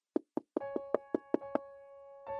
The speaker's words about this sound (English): And then there's this knocking on the door.